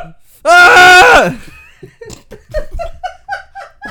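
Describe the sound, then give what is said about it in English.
A man lets out a loud, sharp scream lasting under a second, then people start talking right after it. “Why is he screaming?”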